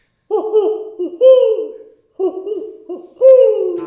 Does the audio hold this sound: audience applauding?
no